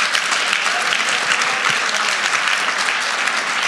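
Loud, sustained applause from an audience, a dense steady wash of many hands clapping at once for several seconds, with no voices standing out.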